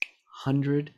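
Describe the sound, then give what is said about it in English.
A single crisp finger snap cracks out sharply at the very start, followed moments later by a man's voice starting to speak. “And I realized that every time I snap my fingers, another person leaves this world.”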